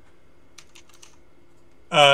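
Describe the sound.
A short burst of quiet, rapid, soft keystrokes on a computer keyboard as names are typed in, followed by a person starting to speak loudly at the very end.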